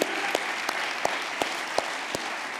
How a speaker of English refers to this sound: All right, let's clap our hands this morning.